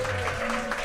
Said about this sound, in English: Yeah, quick round of applause.